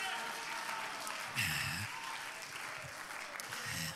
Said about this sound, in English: Oh, give the Lord a clap offering. Come on, clap to him and shout to him. Hallelujah, hallelujah.